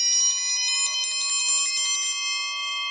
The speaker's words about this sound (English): Well, with the clanging of the Chuckwagon Triangle, partner, we are saved by the bell, I guess.